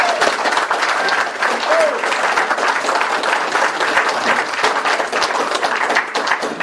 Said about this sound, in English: So I would like, if we may, to applaud the organizers of this wonderful conference.